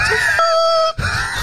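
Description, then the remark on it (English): A voice imitates the high, wheezing whistle of a footballer's breathing as he jogged up the field, a thin steady tone sliding slightly with breathy rasp, broken by a brief pause before the strained wheeze resumes. “I'm usually the one at the back, and I hear this like noise behind me, and it's like this whistling noise.”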